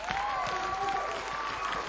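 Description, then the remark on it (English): A church audience applauds a reverend, a steady dense wash of many hands clapping at once, with a sustained higher tone and faint cheering voices threaded through the clapping. “Just give him a great clap.”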